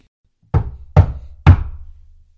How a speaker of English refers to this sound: But she had no sooner shut the outer door behind her than the knock was repeated.